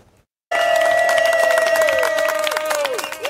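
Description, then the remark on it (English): A crowd of friends and neighbors bursts into loud cheering and rapid clapping for a local doctor who recovered from COVID, after a brief silence, with a steady high-pitched whistle-like tone held over the noise before sliding down. “Friends and neighbors cheer for a local doctor whose recovery from COVID took a lot longer than you might expect.”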